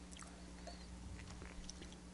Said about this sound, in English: I took a bite of the cheese, and I had a sip of the beer, you know, a few seconds ago.